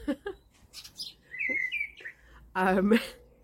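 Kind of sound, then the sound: bird, birds chirping loudly outside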